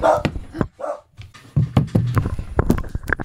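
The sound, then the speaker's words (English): Dogs bark in short, sharp bursts with a high whimper between them, followed by scuffling and clattering movement. “Get the dogs out.”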